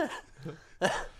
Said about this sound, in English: Yeah, I'm going to cough too